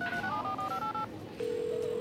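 A quick run of clear telephone keypad beeps, several dual-tone presses in a row, followed by a steady humming ring tone as the call connects, a phone placing a call by voice command. No one speaks.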